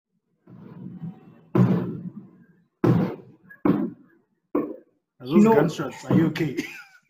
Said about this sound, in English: Gunshots, are you okay? Fireworks, dog. Like, fireworks, day is it today? These people celebrate things every day, dog. They're celebrating the Champions League final, my G. Before it even starts.